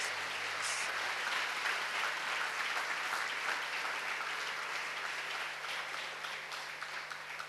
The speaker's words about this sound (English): Alléluia. Amen. Acclamons le Seigneur. Let's clap for the Lord.